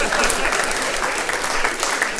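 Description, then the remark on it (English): An audience claps steadily, a dense, even wash of many hands with no gaps, holding at a consistent loudness throughout. “I just want you guys to know that you all just clapped at the idea of me letting my son touch his dick.”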